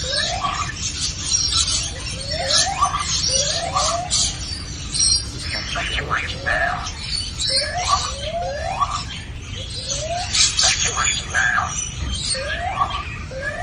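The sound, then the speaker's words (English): A lyrebird mimics an evacuation alarm, including the words 'evacuate now', repeating short swooping siren-like tones in a steady rhythm, mixed with sharp chirps and twitters, fairly loud throughout. “It's a lyrebird, and apparently it can do very strong impersonations. And he's doing the alarm.”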